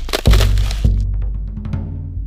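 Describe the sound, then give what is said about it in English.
A rock strikes a frozen pond with a sharp crack, followed by a second hollow impact and ringing, resonant tones that fade as it skitters across the ice. No voices. “Have you ever had the joy of throwing a rock on an iced over pond? So hollow.”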